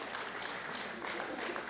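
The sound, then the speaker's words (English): A crowd applauds in a dense, steady wash of clapping that holds at an even loudness for the whole moment, with no voices rising above it. “Don't clap because we got a story to tell.”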